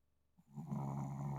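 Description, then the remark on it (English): A single low, rumbling snore swells in after a moment of quiet and holds steady, faint, with no voices. “I wonder if his snoring is picking up on the mic.”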